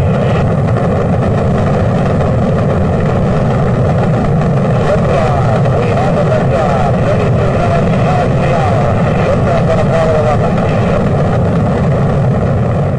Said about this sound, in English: 2-1-0, all engines running.